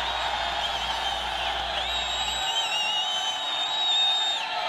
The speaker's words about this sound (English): The man on the mic confirms that the previous demands discussed have been ratified without concession or compromise, and the crowd erupts in cheers.